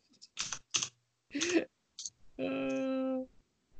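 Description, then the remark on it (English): A few irregular clacking keystrokes on a computer keyboard, spaced apart, followed by a short sustained buzzy tone that stops abruptly. “I can just keep typing.”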